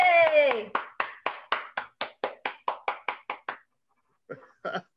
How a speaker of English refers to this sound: Hey. Oh, and the crowd roars.